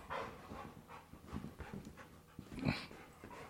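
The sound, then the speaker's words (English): A male dog pants in quick, breathy bursts, with a brief higher whine near the end, as he tries to get at a person. No one speaks. “come on, the dog, he's trying to get me.”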